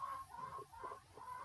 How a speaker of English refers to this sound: Chickens outside.